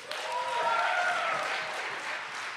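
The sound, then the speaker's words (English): An audience applauds after a poetry performance, with dense, continuous clapping that holds at an even loudness throughout, with a few voices cheering or whooping over it. “To boost us and to hold up, the gift of hand sweet music, clapping strong, to boost us and to hold us all night long.”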